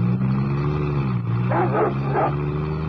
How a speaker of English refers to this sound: That sounded like the Hound of the Baskervilles. Guard dogs.